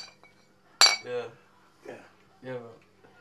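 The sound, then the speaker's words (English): A single bright clink of glasses knocking together in a toast in a pub, followed by a few short bursts of people talking. “Cheers, mate. Yeah, cheers, mate.”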